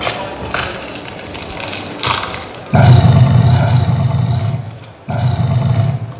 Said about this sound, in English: You're literally doing that by just like pushing your thumb on the glove. Yeah, there's just a little pressure sensor in there, and I can hold the roar, the growl down for as long as I want, so you can.